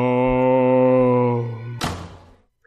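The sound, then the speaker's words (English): A closet door swings shut with a long, steady, low-pitched hinge creak lasting nearly two seconds, then a single solid thud as it closes, fading quickly into silence. “She closed the closet door.”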